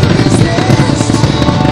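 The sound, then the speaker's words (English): Loud fireworks rumble and crackle outdoors at Freeman Lake Park after a concert, in a dense, continuous barrage, with overlapping booms blending into a steady roar and no clear gaps between bursts. No one speaks. “So every year it looks like, after the concert, they always show the fireworks, and man, it looks pretty nice out here at Freeman Lake Park.”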